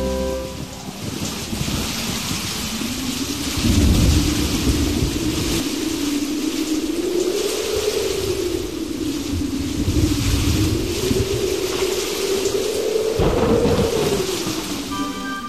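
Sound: rain with thunder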